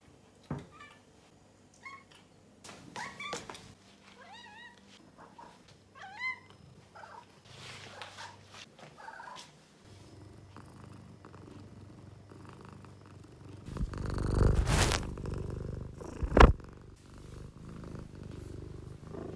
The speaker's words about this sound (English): To make up for maybe the lower or like the shorter length of the podcast this week, please enjoy a compilation of my cat screaming.